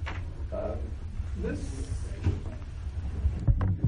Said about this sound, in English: before you sit down, can you just close that door because it's open? Yeah. Thank you. It's just the sound from the lobby flows in.